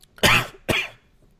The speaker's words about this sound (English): I did not mean to cough right there, but it worked.